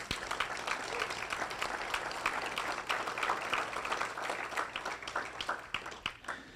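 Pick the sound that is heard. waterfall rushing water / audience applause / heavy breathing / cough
audience applause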